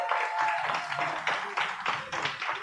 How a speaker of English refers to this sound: So how many of you think the engagement ring, it is too special, it is too sentimental, you wear that thing to the end? Go ahead and make an applause, make some noise.